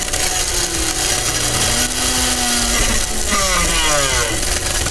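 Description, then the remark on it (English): A blender makes a smoothie, running loudly and steadily, its motor whine shifting pitch and sweeping upward near the end as the contents churn and grind. No one talks. “It's bouncing. It's turning and it's done.”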